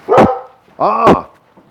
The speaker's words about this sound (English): Oh my God, sometimes getting out of my house with those two. I mean, dog barking at me. Like I don't see her jumping in front of me.